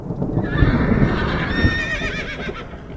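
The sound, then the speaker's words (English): A horse whinnies with a long, shaky, wavering neigh over steady clip-clopping hooves and a dense rumble of movement as horses travel a muddy, churned-up road on the path to Waller after a night of rain. Loud throughout, with no voices. “Our horses couldn't even bear the smell.”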